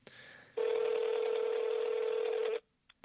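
A single loud, steady telephone dialing tone for a phone call holds for about two seconds with no one speaking, followed by a faint click as it cuts off.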